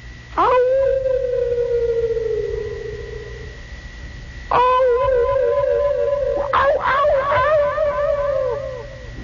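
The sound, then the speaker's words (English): A voice imitates echoing howls of unfriendly wild animals in a vast primal wilderness, using a partial echo chamber effect: three long, wavering cries, the first sliding slowly downward, the next two rising and warbling, each trailing off with a reverberant, slightly electronic tone. “And it is the echoing sound of unfriendly animals.”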